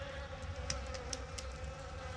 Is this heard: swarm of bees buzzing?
yes